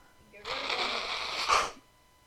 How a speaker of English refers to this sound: I got sneeze. I got sneeze. Fuck. I need to get rid of these fucking sniffles.